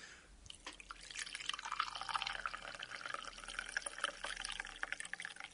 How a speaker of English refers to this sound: We better pour this tea and see if it's drinkable. And now for the moment of truth, we'll try and pour the tea out of the teapot.